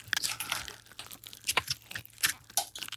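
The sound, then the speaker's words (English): Slime being played with in the hands: wet, sticky squishing with bursts of tiny crackling pops, irregular and close-textured, fairly quiet overall, with no voices. “We are playing with slime. So you'll hear slime.”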